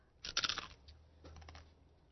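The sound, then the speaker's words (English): Crisp crunching as someone bites into a snack: a loud burst of crackly chewing, followed by a few softer, quieter crunches with a low hum underneath. “Do you hear me crunch?”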